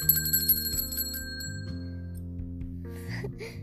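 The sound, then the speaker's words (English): The bell of a shiny red bicycle rings out several quick times at the start, its bright metallic tones lingering and fading over a soft, steady musical background. “Daniel heard a sound. It sounded like ringing.”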